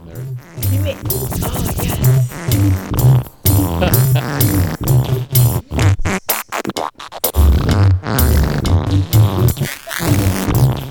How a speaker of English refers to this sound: Not only do we encourage farting at the sausage hut, we make songs about farting.